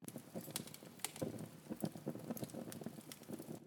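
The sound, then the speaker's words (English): A crackling fireplace: a steady bed of soft hiss broken by irregular sharp pops and snaps, quiet overall, with no voices. “Now, you'll notice I used the fireplace sound for that.”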